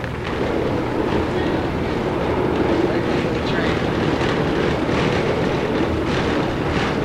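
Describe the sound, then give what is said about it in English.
A moving train rumbles steadily, a continuous loud low-frequency roar with rattling and clatter layered on top, constant in level throughout. “Listen to the train.”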